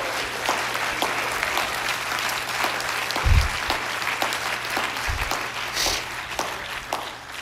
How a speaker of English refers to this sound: Oh, somebody clap your hands to the Lord.